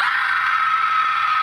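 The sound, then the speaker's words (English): A single loud, sustained scream from a radio drop being played, a person screaming at the top of their lungs, piercing and steady for about a second and a half with no pause or talking around it. “I wake up every day at 7 a.m. to get on to work instead of staying in bed. And I scream at the top of my lungs.”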